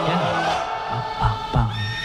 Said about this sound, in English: And you got the horse in the background.